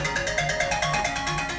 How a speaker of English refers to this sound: Hold on, we got someone trying to interrupt us with a phone call. I don't know who that is.